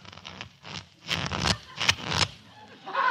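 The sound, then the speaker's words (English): Playing cards being shuffled: several bursts of quick, papery riffling and flutter, the two middle riffles loudest, separated by brief pauses, with no voices over them. “Very well. I'll shuffle.”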